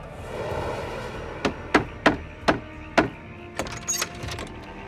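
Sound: knocking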